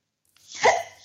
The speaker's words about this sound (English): Where did this hiccups come from? I was about to say, I was like, was that a laugh or a hiccup? It was both.